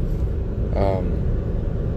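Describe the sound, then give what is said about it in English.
A car drives through heavy traffic on the way back to work, with a steady, low road-and-engine rumble throughout and a brief higher tonal sound rising over it midway. “Traffic's heavy as hell now.”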